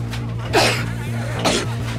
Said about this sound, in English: An old woman coughing, and she coughs like directly onto Matt Damon. Like, how friggin' rude, right?